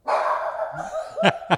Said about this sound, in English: She barked and she went off the ground.